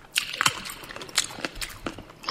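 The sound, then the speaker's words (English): Crisp crunching of pizza crust, a series of irregular crackly bites and snaps over a couple of seconds, with a reverberant tail and no talking. “Crunchy crust. Oh, what do you think about the ASMR with the reverb?”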